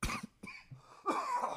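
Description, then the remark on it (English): A fairly loud coughing fit: two harsh bursts at the start, a brief pause, then a longer rasping cough with a wheezy, throaty tail, no talking. “Sorry, I just coughed out your enjoyment for life.”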